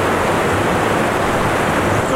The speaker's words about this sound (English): Water! Water!